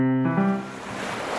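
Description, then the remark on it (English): A brief tonal chime fades into a steady rushing wash of ocean waves that fills the rest of the short clip at an even loudness, with no one speaking. “I'm reporting to you live from the ocean.”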